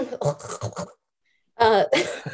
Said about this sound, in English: I keep muting to cough.